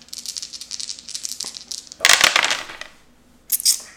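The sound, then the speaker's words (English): Dice rattle and clatter across a hard surface in a quick burst of clicks, followed by a louder tumbling roll and a final short clatter as they settle. No voices. “Well, no help from the dice.”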